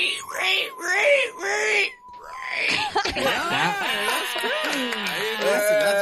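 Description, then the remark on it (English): A person squeals in imitation of a pig, several high, wavering, drawn-out shrieks, rising and bending in pitch, loud and continuous with only a brief pause. “Let's get your pig squeal or your pig's call.”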